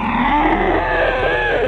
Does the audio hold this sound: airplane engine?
no